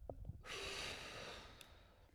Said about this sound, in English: Let's all take a few seconds. Let's just take a decompression. Big deep breath. In and out.